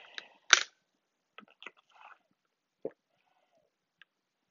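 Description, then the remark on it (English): Someone sips water through a water bottle straw: a sharp click and brief slurp, then a few soft swallows and faint taps spread across a quiet moment with no talking. “You heard, that's my water bottle straw, so sorry.”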